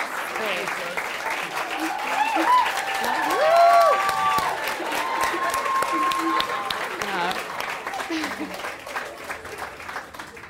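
An audience gives a final round of applause for a departing guest, clapping steadily in a dense, sustained round, swelling a little midway, with cheers and whoops rising above the patter before it gradually thins toward the end.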